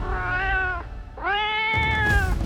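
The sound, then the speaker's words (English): A cat, just released from a satchel and held in someone's arms, lets out two drawn-out, complaining meows, the second rising into a strained yowl, loud with no talking, squirming and clawing with a rough scuffling noise underneath toward the end. “Obatala eagerly released the cat from his satchel. He tried to hold the animal close, but it squirmed in his arms, yowling and clawing.”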